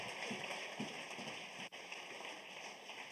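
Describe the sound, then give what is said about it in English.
An audience gives the Lord a hand clap after a scripture reading: dense, steady clapping from many hands forms a continuous crackling wash that holds level for about three seconds, with no voices over it. “Give the Lord a great hand clap for his awesome, powerful word.”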